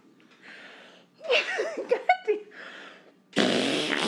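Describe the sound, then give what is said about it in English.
A sputtering fart sound blown by a mother's mouth against her arm, wobbling in pitch for about a second, then a louder, breathy blast of noise that cuts in near the end. “This is your mom doing a fart sound on her arm.”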